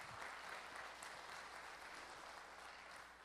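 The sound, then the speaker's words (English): A crowd claps together in a hand clap of praise to Jesus, a dense, steady wash of applause, many hands overlapping into a continuous crackle that holds its level throughout with no voices standing out. “Now, come on, you ought to give Jesus a hand clap of praise on that one.”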